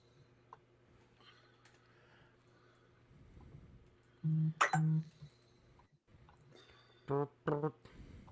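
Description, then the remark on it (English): A phone vibrating in a pocket gives two pairs of short, loud buzzing pulses, each a low rattling hum, with a quiet pause between the pairs and faint background noise throughout. “There's my phone. I heard it. Vibrate in your pocket.”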